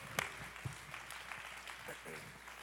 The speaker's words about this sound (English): Praise the Lord, everybody. Give the Lord a big hand clap of praise.